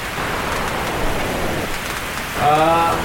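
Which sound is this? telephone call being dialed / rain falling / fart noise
rain falling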